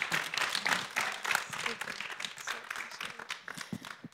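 A crowd applauds the two people about to lead them in song, with steady, dense clapping that holds at a moderate level for about four seconds, thinning slightly toward the end, with faint voices mixed underneath.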